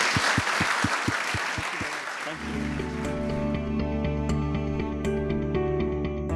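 An audience applauds with dense, steady clapping for about two seconds, then the applause gives way to sustained instrumental music that carries on to the end.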